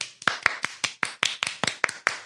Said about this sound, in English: Cheers! Let's clap for ourselves.